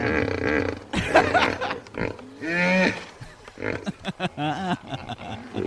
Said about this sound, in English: the time has come to play the hippo sounds